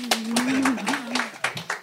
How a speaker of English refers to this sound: I'm not exactly sure what that clapping signifies, but I'm nervous.